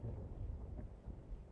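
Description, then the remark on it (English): Soft, steady patter of rain heard at a low level, with a dull low rumble underneath and no voices. “Silence. And the gentle patter of rain.”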